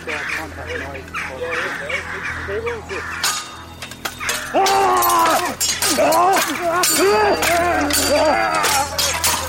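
A flock of alarmed crows caws harshly and urgently, at first scattered and softer, then louder midway, with many overlapping rasping calls in quick succession.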